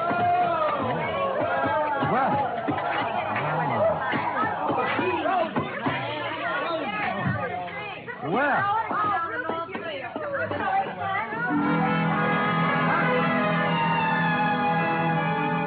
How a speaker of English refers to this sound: They came stamping in, pulling off gloves, unzipping parkas, and if it hadn't been for the grown-up dialogue, looking all the world like a group of carefree children.